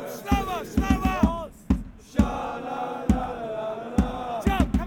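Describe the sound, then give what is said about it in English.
Arsenal fans of the Ashburton Army sing together in a loud chant early in a match while drums pound in quick bursts of several beats, followed by single heavy hits under the sustained singing. “And remember that drumming I mentioned at the start? Well, it does not stop.”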